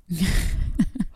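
a person yawning

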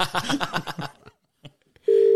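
telephone call ringing out

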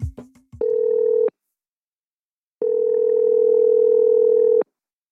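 telephone call ringing tone

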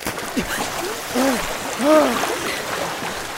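fast-flowing river water

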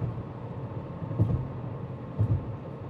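car interior road noise

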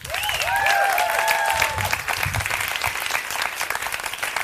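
studio audience applause

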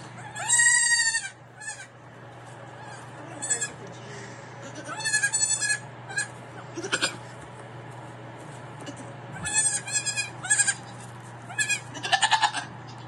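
goats bleating

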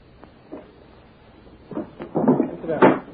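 window being shut

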